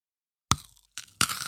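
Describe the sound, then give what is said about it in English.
Crunching of someone biting into chocolate: a sharp snap, a short second crackle, then a longer grinding crunch, heard alone with no talking. “Do you want to hear how crunchy it is?”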